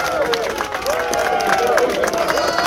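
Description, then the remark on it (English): A crowd claps in scattered, uneven bursts while many voices call and murmur underneath, a steady, fairly loud wash of noise with no pause. “Getting a clap.”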